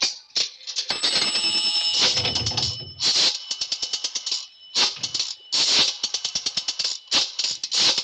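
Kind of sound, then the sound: household object, dialing a telephone number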